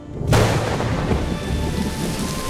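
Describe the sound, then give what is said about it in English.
A sudden crack of thunder bursts in and rolls into a steady, dense downpour of rain, loud and continuing without pause. “Soon, fresh, rejuvenating rain blanketed the brown fields.”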